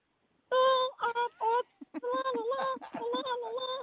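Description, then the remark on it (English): A squeaky, very high-pitched voice chatters in quick bursts, a Munchkin voice impression by a caller from Ferntree Gully on the phone line. It's loud, with short breaks between sing-song phrases and no other sounds. “Give me a bit more Munchkins.”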